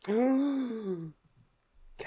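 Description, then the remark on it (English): A single loud, drawn-out voiced gasp, rising then falling in pitch for about a second, followed by quiet breathy rustles. “Gasp.”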